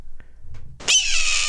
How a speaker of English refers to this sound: So they took the call of a red hawk and they replaced it. You're right. With the bald eagle.